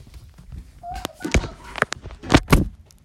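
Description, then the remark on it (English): A door is pulled shut: a brief creak, then a few sharp knocks and thumps from the latch and frame, with no talking. “I'm gonna close the door because she doesn't wanna go to get the food.”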